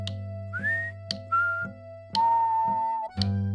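A person whistles to call a speckled horse: three clear notes, a short rising one, a brief level one, then a long held tone. Sharp clicks separate them over a steady low hum.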